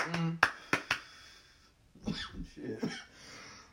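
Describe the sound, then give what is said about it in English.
Three sharp claps land in quick succession near the start, followed by a pause and then murmured talking. “Just make it clap.”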